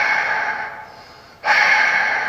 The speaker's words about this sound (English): Will you stop heavy breathing me? Hello, who is that?